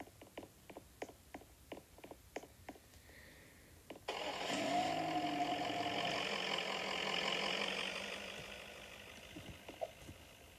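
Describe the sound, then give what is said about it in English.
A series of evenly spaced clicks gives way to a car engine in a video game roaring to life as the car is spawned, revving briefly, then settling into a steady, loud idle that eases slightly toward the end. “And I just have to spawn this car.”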